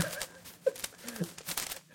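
Quiet paper rustling and crinkling as paper is jolted loose by a fist slammed into a wall, in a quick series of dry, scratchy bursts, irregular, with a few faint muffled thumps mixed in.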